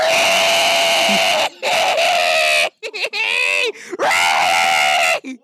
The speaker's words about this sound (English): Before we say goodbye, can you play the feral cat one again, please?